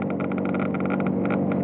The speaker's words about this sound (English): All right, now let's switch to a cold engine operation.